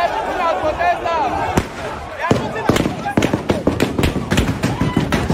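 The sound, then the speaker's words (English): Rapid, irregular cracks of live-ammunition gunfire ring out as a noisy crowd protesting police brutality is dispersed, the sharp loud shots coming in quick bursts over shouting voices. “Live ammunition was used to disperse protesters against police brutality.”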